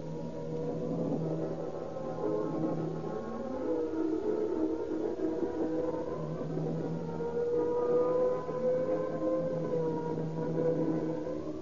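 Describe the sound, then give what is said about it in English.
A fire engine siren wails continuously as the engine speeds through shattered streets to a burning garage, its pitch sweeping slowly up and down in long glides over a steady rumbling background, loud and sustained for the whole stretch with no voices. “Once again, the roaring, screaming engine speeds through the shattered streets, with men fleeing to them like insects.”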